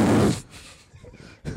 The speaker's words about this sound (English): That was a real fart. I know you can't believe it.